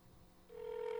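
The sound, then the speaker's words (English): A phone line's ringback tone from a call to a woman who does not pick up starts about halfway through, a steady, fairly loud electronic buzz that holds to the end over faint background hiss, with no one talking. “She's probably not going to pick up.”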